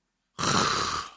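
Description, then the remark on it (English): A person imitates a growly, rasping voice made while breathing inward, one sustained throaty rumble lasting under a second, fairly loud, then trailing off. “Inward breathing thing.”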